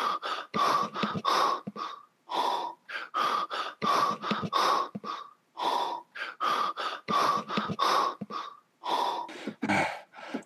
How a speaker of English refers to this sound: And it's one of those awkward things where he forgets to like hang up, so the phone, like the comms, just on in his pocket, and he kind of schleps up. You hear him breathing and rustling.